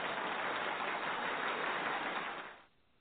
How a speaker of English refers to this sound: Wow, thank you for that round of applause.